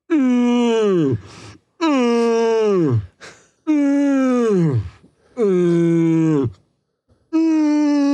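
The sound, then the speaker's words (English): A person acts out breathing heavily as someone who has been shot six times: a series of five loud, drawn-out moans, each sliding down in pitch, separated by brief breathy pauses, with no other talk. “You've been shot 6 times. Oh, okay. And you're breathing. You're breathing heavily.”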